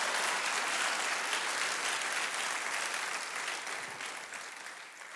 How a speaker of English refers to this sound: Come on, give the Lord a hand clap today.